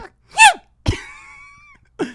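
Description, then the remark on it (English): A voice imitates a tiny, cute sneeze with a high squeaky burst, followed by a sharper puff trailing into a thin, fading tone, then a brief vocal sound at the end. “That was the sweetest sneeze I've ever heard in my life.”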